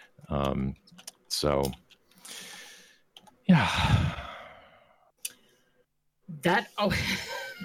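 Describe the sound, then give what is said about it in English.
Clicking and tapping on a computer keyboard in quick irregular bursts as someone transcribes what is being said, mixed with short voiced sounds and a heavy sigh or exhale. “You did hear me typing, right?”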